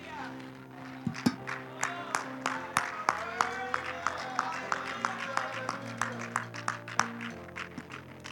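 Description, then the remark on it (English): A church audience claps their hands in praise to the Lord on a Wednesday night, in a steady rhythm, sharp repeated claps punctuating a warm bed of voices and sustained musical tones underneath. “Give a good hand clap of praise to the Lord tonight.”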